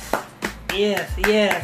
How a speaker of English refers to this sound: Yes. I got to clap for that. Yes. Yes. That is a good thing.